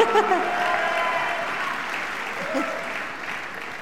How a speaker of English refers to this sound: And so I just honor you all tonight, and I think you need to give yourselves a huge round of applause because heaven takes note.